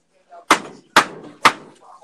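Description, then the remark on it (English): Three sharp, loud wooden slaps, like two boards clapped together, land at a steady pace about half a second apart as someone hits something, with faint murmuring voices in between. “It sounds like two pieces of wood slapping together.”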